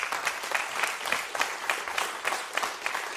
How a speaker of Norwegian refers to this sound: Vi har hørt en nydelig lovsang. Vi vil gi en applaus til lovsangen han.